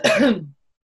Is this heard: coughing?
yes